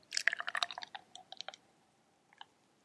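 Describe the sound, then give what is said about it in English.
A 10% beer pours from a 16-ounce can into a 16-ounce glass for a tasting, a crackly fizzing splash for about a second and a half that thins to a few scattered pops and drips, with no voices. “We were almost able to get the whole thing in the 16-ounce glass. Like, in one go.”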